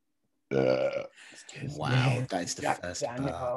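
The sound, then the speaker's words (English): A loud burp rumbles out during a Zoom call right after a brief silence, followed immediately by people talking and laughing. “That's the first burp I've had on the podcast.”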